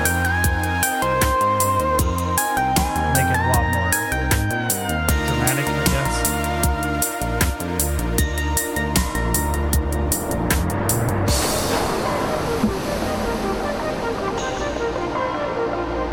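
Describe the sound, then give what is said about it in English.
Loud, distorted ambient video game music, a distorted version of an original game song, with a steady pulsing low end and shimmering tones builds up, then dissolves into a noisy, washing swell of sound-wave effects like crashing surf that carries through to the end. “I also like the effects that I always do, the little sound waves.”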